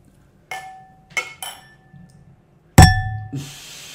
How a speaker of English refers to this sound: That's gonna suck to edit out. He just dinged his glass directly onto the microphone. Yeah, that's peaked entirely.